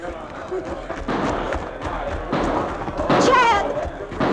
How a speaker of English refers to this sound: Those shots are coming from the jail.